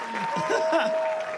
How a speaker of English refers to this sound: Okay. Everyone clap your hands.